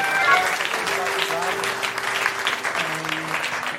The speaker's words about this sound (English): Just a round of applause